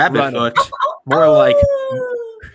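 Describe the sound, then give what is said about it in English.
A human voice imitates a dog's joyful howl: a brief yelping burst, then a long, loud howl that slides gradually downward in pitch before trailing off. “She howls with joy and takes off out the front door.”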